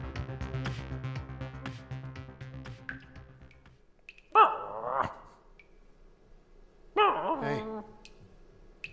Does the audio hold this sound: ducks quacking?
no